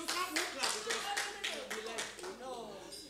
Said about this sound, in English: If you clap, I'll move on. If you don't clap, I'll stay here.